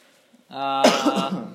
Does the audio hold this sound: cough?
yes